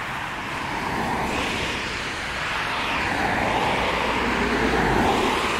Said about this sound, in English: Some of these cars are going way too fast.